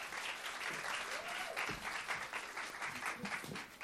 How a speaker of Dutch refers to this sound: Laten we haar een groot applaus geven. Let's give her a big hand.